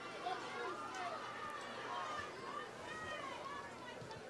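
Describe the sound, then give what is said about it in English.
A large, unhappy football crowd murmurs and grumbles in a steady, dense wash of overlapping voices, with no single speaker standing out, holding an even, moderate loudness throughout, during a timeout before an extra point attempt. “Hear the football PhDs out in the crowd. They're not happy.”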